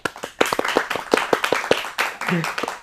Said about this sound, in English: Let's give him a big hand.